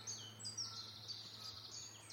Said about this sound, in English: So I think we're up to about 5 warblers already. Listen to that cascade of birdsong.